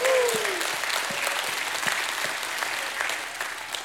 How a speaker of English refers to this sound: Can somebody give God a hand clap and a shout of praise?